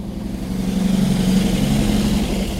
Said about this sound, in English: a truck passes us, as if on cue. Small logs.